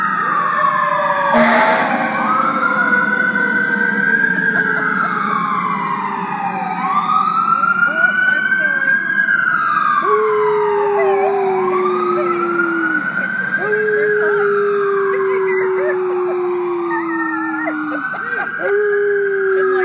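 Several emergency vehicle sirens wail together, their rising and falling tones overlapping in long sweeping cycles, loud, with a low rumble of engines beneath.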